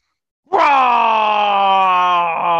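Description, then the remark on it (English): A man's voice imitates a dragon roar: one loud, sustained, growling cry with a low, steady pitch that holds for about two seconds without pause. “Roar! Glaze. That's dragon for star glazing.”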